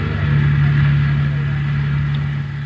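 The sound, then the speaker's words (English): A car engine hums steadily as the car drives up to Groveland Drive, a constant low drone that holds for a few seconds before easing off slightly at the end. “Ben and I drove up to Groveland Drive and joined the search.”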